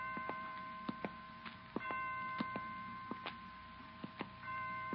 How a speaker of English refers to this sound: Well, 5 o'clock. I didn't know the hospital had chimes.